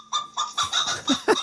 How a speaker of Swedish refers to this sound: Det är sultan, ju hönan har ju ett särpräglat utseende med befjädrade ben. Ja. Det är en prydnadsras,